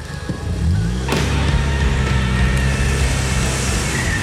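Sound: car reversing fast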